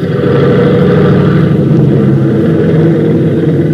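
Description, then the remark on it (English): A loud, steady engine roar holds at high power throughout, a dense low rumble with a rough, buzzing texture: the engine of a Conestoga airplane being revved up on the ground during a tune-up. No one speaks. “Rev up again.”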